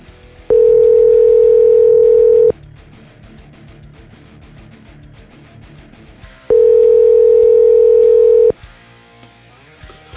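A telephone dial tone sounds twice, each a loud, steady two-second hum separated by a long pause, with soft music playing quietly underneath throughout.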